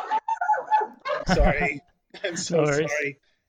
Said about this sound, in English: Sorry, I'm gonna get the dogs out of here. Apologies.